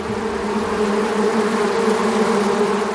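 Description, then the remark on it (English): A dense, steady drone of a swarm of honey bees buzzing together, loud, with a continuous humming tone that holds without pause and no voices present; the swarm is a mass migration of bees from the parent colony looking for a new home. “We're talking about the insects of summer this week, and today we'll step into one of the most feared of insect phenomena, a swarm of bees.”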